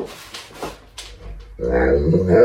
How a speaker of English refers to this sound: I'm going to play for you this dog, and let me hear it.